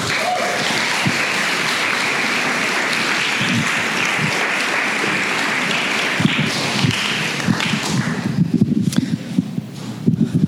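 A crowd at a storytelling event claps for the next storyteller, steadily in a dense, loud wash of applause, which thins out toward the end as a few scattered claps and low thumps remain.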